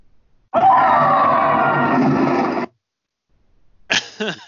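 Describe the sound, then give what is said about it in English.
A female game character, an infected stewardess in a zombie game, lets out one long, loud, strained cry as she is knocked off a catwalk. It holds steady for about two seconds and then cuts off abruptly, followed by a pause and a short burst of another voice. “it's like the stewardess, she is infected and she's fighting with her friend on this like catwalk, and she gets knocked off the catwalk and she makes a funny sound, and I thought, I'll play it.”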